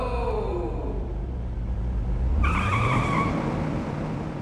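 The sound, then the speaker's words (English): A car engine roars with a heavy low rumble, then tires break into a loud, sustained squeal halfway through as the car accelerates hard on a lonely road through the Alleghenies. No voices. “I stepped on the gas like a shot.”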